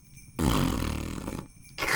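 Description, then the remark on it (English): A voice blows a loud, buzzy raspberry imitating a fart, a low rumbling burst lasting about a second, followed by a short pause and the start of another. “So what you do is you sort of fart and push out.”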